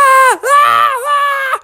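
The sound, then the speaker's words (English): A single voice imitates panicked screaming with two loud, high-pitched, sustained wails, briefly broken in the middle, alone with no other sounds. “and suddenly all the people in the parking lot below all started to scream, because first, they're afraid of bears, and second, they have never seen a bear with dragonfly wings coming straight towards them.”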